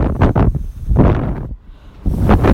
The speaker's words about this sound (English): The first half was a free fall, holding her arms out to stabilize, the rush of the wind just white noise now.